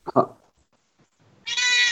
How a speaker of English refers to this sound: Your cat is screaming at me. She was screaming at me for like 20 minutes, so I finally decided to open the door.